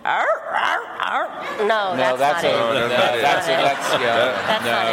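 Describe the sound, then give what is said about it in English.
A person vocally imitates a donkey's bray with a run of strained, wavering honks that slide up and down in pitch, loud and unbroken, coming out more like a yelping dog. “I want to know why the accepted sound of the donkey is hee-haw, because I don't think that's the sound they actually make, what right?”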